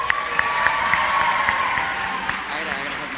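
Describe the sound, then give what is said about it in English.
A crowd breaks into steady applause, dense overlapping claps with some cheering voices mixed in, loud and sustained for a few seconds, as the audience votes by applause on whether a young man who came up front should get a bag of candy. “But since we had a good-looking young guy that came up here, I'm going to let them vote today with your applause.”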